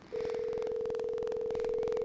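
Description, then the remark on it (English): An outgoing call's ringing tone sounds as one steady, continuous electronic tone for about two seconds, clear and fairly loud, with faint rhythmic clicking underneath and no voices. “Pick up your phone, dog. Pick up your microphone.”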